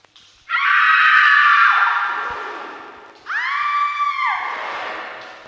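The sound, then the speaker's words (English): Two long, loud screams in a row, the first sustained and slowly fading, the second rising sharply with a wavering pitch; they sound like a recording played back from an old jukebox. “Were those screams just recordings?”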